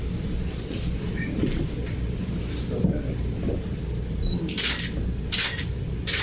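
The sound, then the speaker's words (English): Camera shutter clicks three times in fairly quick succession, crisp, as someone takes a lot of pictures, over a steady low rumble with faint, indistinct voices in the background. “I took a lot of pictures.”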